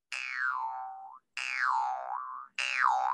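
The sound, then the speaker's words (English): The reed of a mouth harp is strummed three times, each strum a buzzy, sustained boing whose pitch bends down and wobbles back up before cutting off, with short gaps between and no talking. “This is the reed, and you would place your bottom of your top teeth on there. So it's almost like you're biting it, and then your bottom lip right here, and then you just strum it.”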